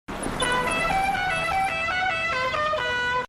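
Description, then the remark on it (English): Someone imitates a musical car horn, sounding a quick melody like the Mexican tune La Cucaracha, with bright, buzzy, steady notes that step up and down in pitch, loud and continuous for about three seconds with no talking. “No, I tried to do an impression of a horn, and then, like, it just sounded terrible.”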